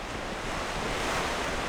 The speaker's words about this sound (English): That up there, that Lake Michigan, it breaks waves like an ocean, you know, and it's amazing, really.